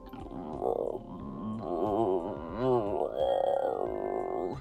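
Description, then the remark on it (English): A person vocally imitates a hungry woman's growling stomach with drawn-out, warbling, gurgly groans that rise and fall over several seconds, fairly loud with no other sounds around it. “I can hear her stomach growling all the way over here.”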